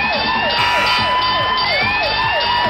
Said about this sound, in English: The timer just went off.